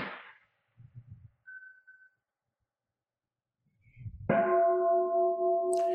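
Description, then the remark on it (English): An Incan meditation bell is struck once and rings on with a bright, steady tone and clear overtones, sustaining loudly to the end after some soft shuffling and quiet moments. “In the future, hit the Incan bell.”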